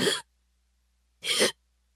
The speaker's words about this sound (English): He staggered down the road, breathing in short gasps.